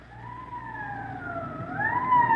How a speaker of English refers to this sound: Code 3, that means red light and siren.